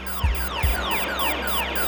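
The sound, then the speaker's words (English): A shipboard AIS (alert incoming ship) alarm sounds on a boat in the Atlantic, warning of an incoming ship: a rapid series of repeating electronic downward-sweeping tones over a steady hum, with two dull low thumps near the start. No one speaks. “she hears her AIS, that's alert incoming ship alarm, go off”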